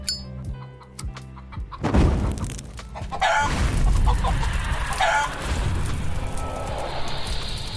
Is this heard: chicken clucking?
yes